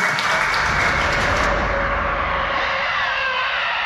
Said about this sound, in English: Look, just pretend we've come into the end of the show. Let's have an applause for the end of the podcast. Thank you, ladies and gentlemen.